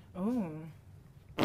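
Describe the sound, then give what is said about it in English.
A voice makes a wavering, droning imitation of a fart, followed after a short pause by a loud, sputtering raspberry-like burst at the very end. “for fart sounds, he sends in a super chat.”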